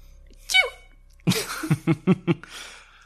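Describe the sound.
A voice imitates the little death sneezes of a swarm of tiny Grimishkas all falling over at once: one high, squeaky sneeze, a brief pause, then a rapid run of four or five small, sharp sneezes, fairly loud.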